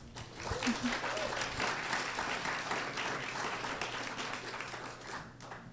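An audience breaks into steady applause, a dense wash of many hands clapping at an even, fairly strong level for several seconds before tapering slightly at the end.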